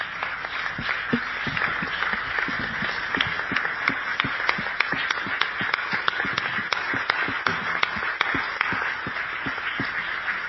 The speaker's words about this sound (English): That was one of the most powerful stories I've heard in a long time, so we're going to stand up and applaud that. Yeah.